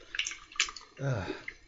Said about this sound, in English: Well, while I'm pouring, man